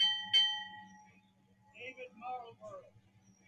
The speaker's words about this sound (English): Punctuated by the tolling of a Navy bell.